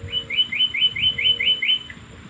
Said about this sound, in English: And there's the Guam flycatcher, the chukawangwang. A small blue and white bird with a bit of rusty wash on its breast.